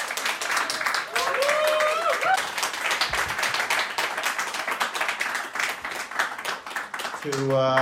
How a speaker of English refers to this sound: Friends, please give Ben M. Freeman a massive round of applause.